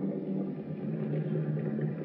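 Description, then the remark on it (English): A car engine idles steadily at the gate of a palatial estate's drive, a continuous low rumble with a droning hum that holds even throughout. No voices are heard. “Turn out your lights and turn off your motor.”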